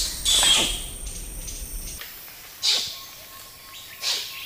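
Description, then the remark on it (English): A wild orangutan's kiss squeaks: three sharp, high, wet-sounding squeals spread over a few seconds, the first longest and strongest, against a faint steady whine of forest background. “Is this the kiss squeak of an orangutan?”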